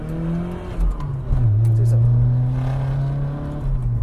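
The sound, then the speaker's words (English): A 1990 Nissan 240SX car engine revs up and accelerates as the driver steps on the gas, its steady low drone rising in pitch and holding loud, with a faint interior hum and road noise around it. “You gotta, like, step on the gas to get it to go.”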